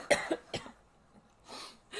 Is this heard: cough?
yes